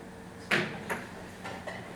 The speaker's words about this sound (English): Max opened the door and stepped inside.